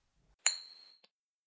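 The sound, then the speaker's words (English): A coin is flicked to make a pick for a Steelers versus Seahawks game, with a sharp metallic ping that rings out high and clear for about half a second, followed by a faint little click. No one speaks. “Looks like the coin's going with the Steelers here.”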